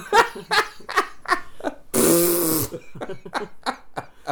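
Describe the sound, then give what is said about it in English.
A voice imitates a Ford Focus car horn that sputters into a flatulent, raspy blare, one sustained buzzy honk in the middle, framed by short choppy vocal bursts and laughter-like sounds, fairly loud. “Not my my Ford Focus has a manly horn. Mm-hmm. It's like, it's like a trucker. And man. Then it farts.”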